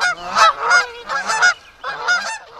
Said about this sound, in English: Hundreds of years ago, in the year 4 BCE, 公元前四年, invaders, 侵略者, were stopped from attacking the city of Rome when it was very dark, because as soon as they tried, the geese in the area made lots of noise.